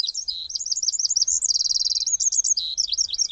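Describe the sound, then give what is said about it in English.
A tiny Eurasian wren sings a loud, rapid, high-pitched song of tumbling notes with a fast buzzing trill in the middle, continuous for a few seconds, clear with no talking. “The tiny Eurasian wren is a common garden bird in England, quite similar to the winter wren of the U.S.”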